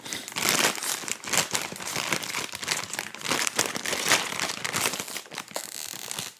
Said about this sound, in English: Did you hear it? Sometimes if you listen closely when you open a new bag of chips, you can hear the spirit of the chips leaving the bag. We're free. That's why the chips are so puffed out. It's not actually air. It's the soul.